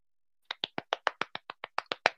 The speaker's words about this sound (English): Well done. He's clapping.